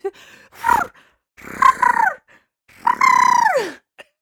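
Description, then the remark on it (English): A voice imitates the ship's steam whistle from Titanic with three loud, droning hoots, each longer than the last, the final one sliding down in pitch as it fades. “Sorry, any excuse to bring back my impression of the whistle from Titanic.”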